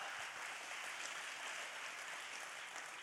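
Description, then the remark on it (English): An audience across two campuses applauds steadily, giving Jesus a big round of applause: a dense wash of many hands clapping at an even, fairly loud level with no voices rising above it. “Come on, both campuses, give Jesus a big round of applause right there.”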